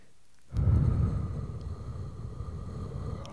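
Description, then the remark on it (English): After a brief moment of quiet, a loud, rumbling rush of breath blows straight into the microphone and continues as a steady, muffled hiss until the end, with no talking. “Just breathing into the mic.”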